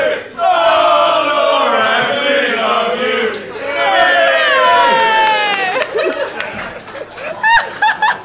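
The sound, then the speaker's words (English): A small group of voices cheers and chants a name together in a sustained, excited burst, with rising whoops and laughter mixed in, loud throughout. “I think that is the first time the prayer mechanic in Sorcery has ever got a cheer.”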